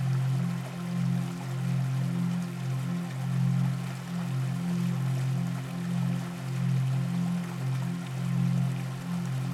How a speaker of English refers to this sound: It sounds so loud right now, the momentum forcing the water down.